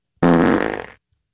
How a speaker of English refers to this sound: Apparently, this not so silent but deadly guy. So it's not actual farts, it's a serial fart noiser.